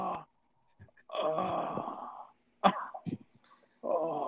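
A man coughs in a few harsh, close bursts, with drawn-out strained vocal sounds like groaning or wheezing before and after the coughs.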